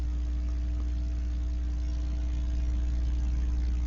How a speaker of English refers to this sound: It sounds like a spray wand. Yeah, that's so weird. Like water being sprayed or something.